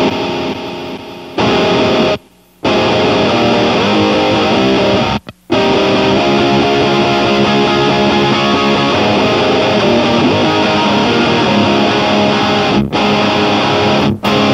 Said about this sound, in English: The Plasma pedal is so crazy. So dope. How are you using that? I use it, I just have a fuzz pedal, and then that is my like, what, chaos distortion pedal?